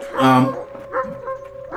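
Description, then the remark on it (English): Dogs whining in their spots, bunched up together and not responding, with a thin, steady high-pitched whine running throughout and a louder, fuller cry near the start, followed by softer whimpers. “They are actively whining in their spots.”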